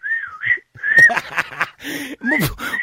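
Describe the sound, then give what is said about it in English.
A pet bird named Nathan warbles, mixing smooth whistled notes that rise and fall with rapid chirps and scratchy clicks, fairly loud and continuous with only brief pauses, no talking. “I was going to say, was that you or the bird that was warbling there, was it?”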